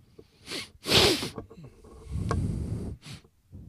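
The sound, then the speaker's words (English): Several sharp, breathy sniffs through the nose, the second one loudest, with a short scrape and low rustling between them and a final quick sniff near the end. “Stop. Don't sniff.”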